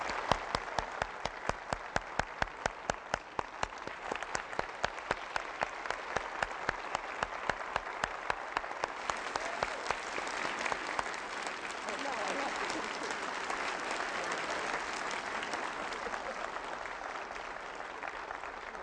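An audience applauds for about nineteen seconds, starting with sharp, rhythmic unison clapping that gradually dissolves into a dense, steady wash of scattered applause at a fairly loud, even level.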